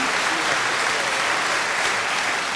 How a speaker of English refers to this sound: Just before I go, let's just have one round of applause for Bix, okay? Wherever you are, Bix, we love you.